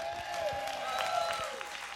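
A large crowd claps enthusiastically in a dense, steady roar of applause for Pastor J.P. Dorsey, with a sustained musical tone droning underneath throughout.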